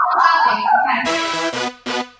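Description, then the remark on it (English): A small Chihuahua barks excitedly at an air-conditioning repairman, a run of three sharp, high-pitched yaps following a brief whiny vocal sound, loud and rapid with short gaps between. “and her dog is going crazy with the air AC guy.”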